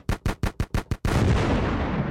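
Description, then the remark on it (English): A quick burst of six sharp, gunfire-like cracks gives way to a loud, sustained explosion roar that rumbles on to the end, an explosion sound effect played from a soundboard, with no voices. “I got the explosion soundness.”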